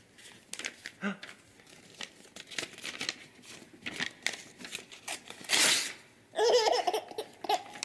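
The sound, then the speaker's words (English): A dad playing with his little son rips up paper again and again in short, crackling tears, with the small child's delighted laughter breaking in between the rips and swelling loudly near the end. “But this is a video, a dad who, playing with his little son, just rips up a piece of paper.”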